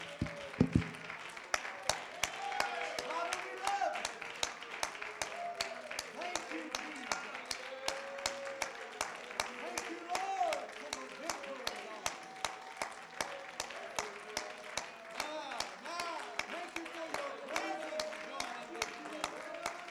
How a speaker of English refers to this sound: Well, do me one favor, if you will. Will you clap your hands unto the Lord and shout with a voice of triumph unto God, and let me join in with you.